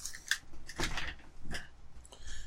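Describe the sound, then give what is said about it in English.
A dog paws and scratches at a door in several irregular, scraping bursts, each a short rasp of scuffing over a faint low rumble, with no voices. “What is that noise? I think a dog is pawing at my door.”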